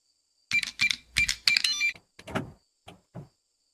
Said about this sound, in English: There is a key card slide. Lizzie, you're up. On the front door? Okay, Lizzie will take the card she was given and swipe it.